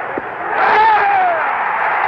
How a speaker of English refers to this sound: Got him! Listen to the crowd! It was his 15th strikeout.